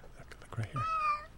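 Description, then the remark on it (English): A single drawn-out meow from a little cat, clear, rising then falling in pitch, preceded by a brief low murmur or rustle. “Oh, oh yeah. That's so cute. Yeah. A little kitty.”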